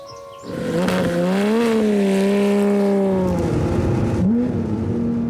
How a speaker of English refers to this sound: As he revs up Lola, his race car